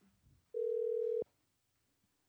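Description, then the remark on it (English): A telephone dial tone sounds on an outgoing call to one of the women from a retreat: one steady, clear electronic tone lasting under a second, alone against a quiet line with faint clicks before and after. “Well, we have a list in front of us of all the ladies who were on this retreat, and so we're going to make some phone calls, see who we can get to answer the phone.”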